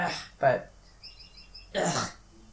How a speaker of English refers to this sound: That bird sounded like it was in the room. It sounds like it's in the room, yeah. It's like echoing.